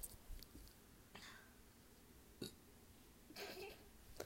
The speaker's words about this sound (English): Sorry, I just I had to burp. I don't know if you heard that or not.